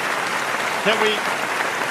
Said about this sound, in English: Thank you. Can we please stop the clapping? Can we stop the goddamn clapping? Thank you.